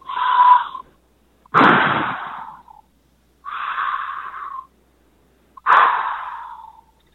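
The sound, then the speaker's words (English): Four heavy, raspy breaths alternate between inhales and exhales with short pauses between them, loud, with a band-limited, phone-line quality and no talking, left as a voicemail message. “Here's your requested voicemail of some heavy breathing.”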